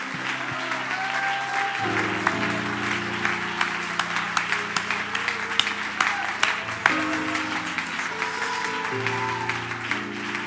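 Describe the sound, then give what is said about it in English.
An audience gives the Lord a steady hand clap of praise throughout, a dense wash of many hands, while sustained organ or keyboard chords shift underneath. Occasional shouts rise from the crowd. “Give the Lord a good hand clap of praise and lift your voice with that hand clap.”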